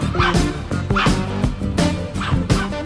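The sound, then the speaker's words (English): A white hound dog barks repeatedly at the people recording, pushing other dogs out of the way, in an irregular series of loud, full-throated woofs, some with a yelping edge, over a constant background rumble. “I'm going to call him that old hound dog. That's what it is, a hound dog.”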